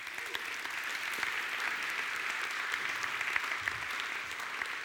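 An audience claps in a steady, dense round of applause that holds at an even level for about five seconds, with crisp individual claps peppering the bright wash of sound.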